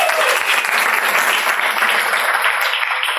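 An audience applauds steadily for two presenters, dense rapid clapping filling the space at a loud, even level for a few seconds without pause.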